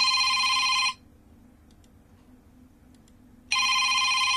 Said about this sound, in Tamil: பாதுகாவலர் அறையில் அழைப்பேசி சத்தம் கேட்டதும் நினைவலைகளிலிருந்து மீண்டு சட்டென எழுந்து அழைப்பில் பேசினான்.